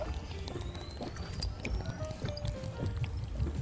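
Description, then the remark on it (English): Water pours steadily into a container as the final step of making coffee from a Cometeer coffee capsule, a continuous splashing gurgle with faint rising tones as the vessel fills, moderately loud for a few seconds. “Now that you've woken back up from your sleep, final step, water.”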